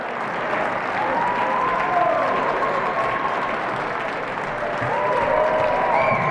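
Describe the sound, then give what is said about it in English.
A crowd at a track race applauds steadily as two men over 90 run the last lap of a 400 meter race, a dense wash of clapping that holds at an even loudness throughout, with scattered cheers and a few high whistles rising above it. “By their last lap, they have the crowd on their feet.”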